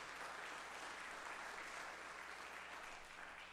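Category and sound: crowd, audience hand clapping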